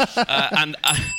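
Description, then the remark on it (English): A brief voice-like sound gives way to a single bright doorbell chime that rings out clearly and sustains, moderately loud, as someone arrives at the door at Christmas. “calling into his head mic for Santa for about 10 seconds before the doorbell rings”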